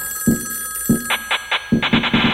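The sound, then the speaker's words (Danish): A telephone rings in the middle of the night in short, rapid bursts with a bright metallic bell tone, several rings close together, fairly loud, with no voices present. “Ja, telefonen?”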